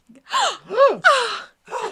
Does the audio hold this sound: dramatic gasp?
yes